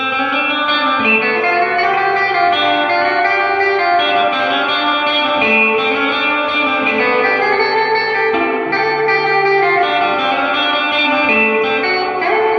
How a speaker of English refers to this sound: No, but the reverb sounds nice on it. Yeah, let's hear the... This is the flush reverb.